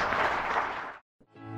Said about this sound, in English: So thank you very much, and on that note, let's give the panel good applause.